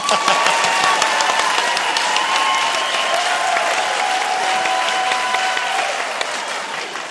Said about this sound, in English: I would need you to applaud at this point.